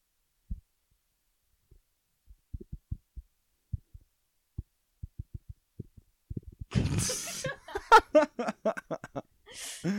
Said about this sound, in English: So I guess we're doing Morse code now.